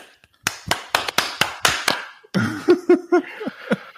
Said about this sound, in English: When I tell you I haven't started Zencastr yet. Oh, there we go. My clap check.